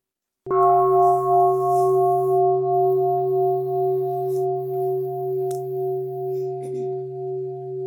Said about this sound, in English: May the sound of this bell ring throughout the universe, awakening all beings to joy and equanimity.